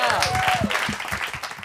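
An audience applauds steadily, a dense run of many overlapping claps with cheering voices rising over it, loud and sustained throughout.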